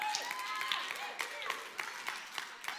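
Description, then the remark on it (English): A crowd claps steadily while scattered voices whoop and cheer over it, the sound full and lively throughout. “You want to know why all these people are clapping and yahooing and stuff?”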